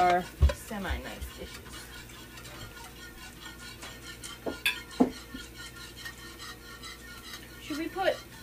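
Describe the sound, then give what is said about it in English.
Dishes clink and clatter as they are taken out for three place settings, lifted and set down, with scattered sharp knocks of ceramic and cutlery against a low background hum, fairly quiet. “Alright, three places so I can get the dishes.”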